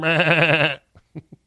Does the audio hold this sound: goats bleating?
yes